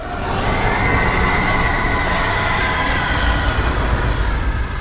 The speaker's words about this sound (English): Volcanoes erupt with less force. The sonic caterwaul blasted me back once I came, my head and shoulders smashing into the steel ceiling, the surrounding metal beams buckling upward from the nuclear sound wave, plummeting.